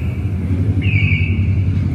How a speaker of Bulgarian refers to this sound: Да мине мотора.